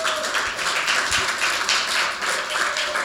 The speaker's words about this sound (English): And so we're thankful. Yeah, come on, clap your hands for that.